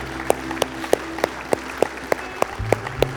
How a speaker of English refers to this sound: Hey, can we give God a round of applause this morning? Thank you, Lord.